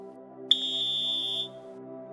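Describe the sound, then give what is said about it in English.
A single shrill, high-pitched whistle blast lasting about a second, signalling runners to turn during a running drill, starting abruptly and holding a steady tone, over a continuous low humming background. “Get ready to turn and turn on the whistle.”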